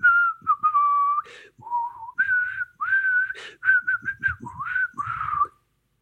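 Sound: person whistling a tune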